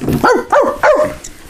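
Three sharp, loud dog barks in quick succession, evenly spaced about a third of a second apart, close and prominent with no talking.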